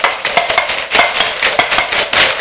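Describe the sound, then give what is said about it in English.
Someone mimics a horse's clip-clop with a quick, steady run of sharp, bright clicks, about a dozen in a row, fairly loud, with no talking. “Cloppy the horse.”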